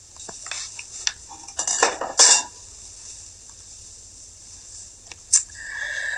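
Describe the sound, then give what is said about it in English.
Clinking and scraping of metal cookware, a cluster of bright clatters and a sliding scrape as a pot of root tea is taken off the stove, then a sharp clink and a steady hissing tone near the end. “Just let me get my root tea off the dang stove.”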